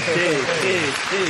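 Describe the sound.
Dense, steady clapping fills the short stretch, a brisk patter of hands, with a voice talking over it, clapping to celebrate reaching the top 10 in the comedy category.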